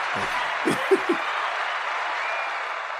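An audience applauds steadily for about three seconds, a dense, even wash of clapping, with a few brief vocal whoops or calls breaking through early on.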